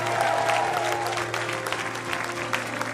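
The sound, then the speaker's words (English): A church audience claps steadily and loudly with scattered cheers and whoops as a shout of praise to God, a dense sustained wash of applause over a low hum, with no talking. “Come on, can we give God a huge shout of praise?”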